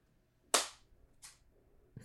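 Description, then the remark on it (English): A microphone hits the floor with a sharp, loud crack that rings out briefly, followed by a softer knock and then a dull, low thump as it settles. No voices. “He dropped his mic.”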